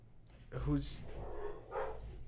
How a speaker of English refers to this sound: my dogs are in the other room crying because Stella loves Jake and wants to be by him